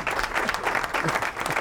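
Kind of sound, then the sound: crowd, audience applause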